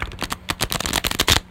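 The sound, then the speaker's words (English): A deck of playing cards being shuffled, a quick run of crisp, papery flutters and snaps lasting about a second and a half, with no talking. “Someone wants to like shuffle some of those. That would be helpful.”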